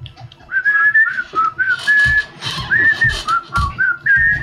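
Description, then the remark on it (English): A lively tune is whistled by several people in a steady, bouncing melody of short and held notes, fairly loud, with some thumping and shuffling underneath. “They all break out into whistling.”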